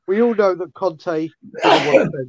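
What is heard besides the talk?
sneeze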